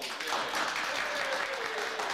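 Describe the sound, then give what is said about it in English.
A crowd applauds steadily, a dense wash of many hands clapping at an even level throughout the short stretch, with a faint murmur of voices mixed into the noise. “A lot of applause in this episode.”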